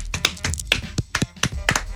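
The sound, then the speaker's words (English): A few people clap together at close range, a loose, uneven patter of sharp hand claps lasting a couple of seconds with no talking over it. “All claps.”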